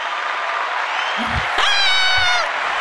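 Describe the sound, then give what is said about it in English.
Steady, dense applause fills the whole stretch, with a brief high, drawn-out cry or whoop rising over the clapping midway through. “Ladies and gentlemen, they deserve a round of applause.”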